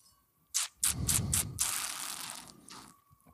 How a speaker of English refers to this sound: So I'm going to take a sip out of the glass, because when I had the two, the glass was better.